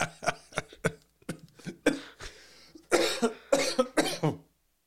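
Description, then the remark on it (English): A person coughs repeatedly: a run of short, sharp coughs followed by heavier, harsher hacking bursts, with no talking in between. “Part of the thing with my back being thrown out is that it hurts so bad to cough.”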